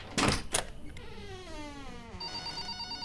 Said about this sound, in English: No, I meant you could have answered the phone.